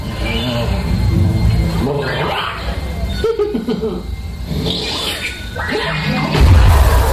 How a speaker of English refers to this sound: What's going on? The cannons are misfiring. How is that possible? It seems to be something the prisoner's doing.